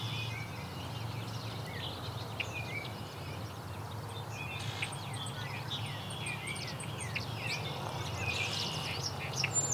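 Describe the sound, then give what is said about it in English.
A song sparrow sings a lively series of bright, high chirps and quick trills, repeated over a steady low rumble, with other birds calling faintly in the background. “Song sparrow.”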